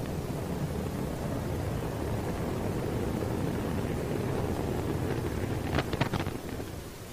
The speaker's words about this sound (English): And that is the point on the 28th of October. The unmanned Antares rocket blew up just a few seconds after leaving the launch pad with supplies for the International Space Station.